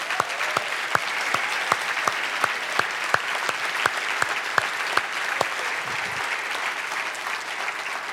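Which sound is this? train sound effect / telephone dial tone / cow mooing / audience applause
audience applause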